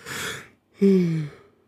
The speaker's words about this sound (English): Sorry for the yawn